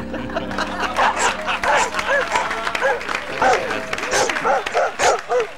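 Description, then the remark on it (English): Dogs bark in quick, repeated bursts throughout, fairly loud, layered over a noisy background of crowd chatter and scattered laughter. “All right, stop those dogs from barking, will you?”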